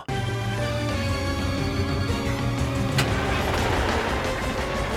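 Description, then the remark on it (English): The engine of Carl, a crane truck driving through the streets, drones steadily with a low, rumbling hum and tonal whine, holding a constant loudness throughout, with a brief sharp clatter midway. “Carl drives through the streets.”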